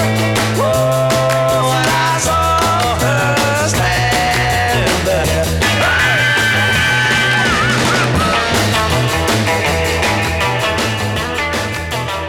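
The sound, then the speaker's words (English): Loud, full-band 1960s band's rock song with driving drums, bass and guitar under sung vocals, including sustained high falsetto 'ooh' notes that ring out above the mix. “This is the first … song to feature the high falsetto ooh, which became a live cue for girls to scream, wet their pants.”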